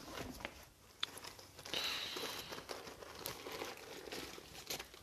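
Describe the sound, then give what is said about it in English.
A small wrapper crinkles and crackles as a cough drop is unwrapped, with irregular sharp rustles and a brief high squeak partway through, fairly quiet and with no talking. “Might throw a cough drop in.”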